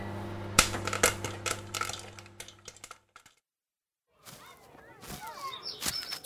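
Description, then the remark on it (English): A steady microwave hum with sharp, irregular popcorn pops crackling over it, fairly loud, cutting off abruptly; after a brief silence, other voices and sounds follow. “And more popcorn in the microwave.”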